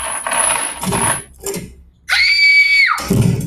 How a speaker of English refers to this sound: What the devil are you screaming about